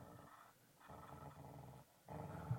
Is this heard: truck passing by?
no